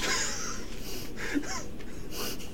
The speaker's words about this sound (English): That panting's doing something to me.